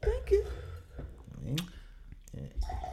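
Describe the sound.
Wine splashes and gurgles into a glass at a microphone, the pour rising in pitch as it fills, with some muffled voices and handling noise around it.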